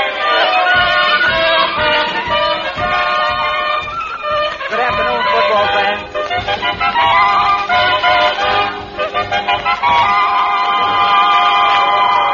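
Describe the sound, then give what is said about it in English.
A large football stadium crowd at an exhibition game between Central Night School and John J. Boskowitz Night School cheers and shouts continuously, loud, a dense wall of many overlapping voices that swells and dips slightly but never stops. “This is the biggest crowd these old-timers have ever drawn,”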